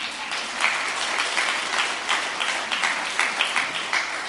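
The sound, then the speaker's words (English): A church audience breaks into steady applause for their pastor, many hands clapping at once in a dense, continuous patter lasting several seconds with no voices on top. “Give a hand clap to our pastor for that.”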